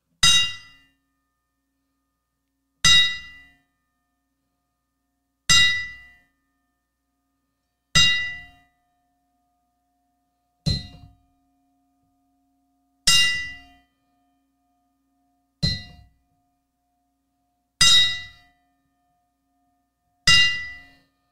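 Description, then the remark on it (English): A boxing bell tolls a ten count in memory of a rapper, single loud metallic clangs struck slowly and evenly about every two and a half seconds, each ringing out and fading before the next, with no voices. “a lot of the boxing community, when we lose a boxer, they do a 10 count for the bell.”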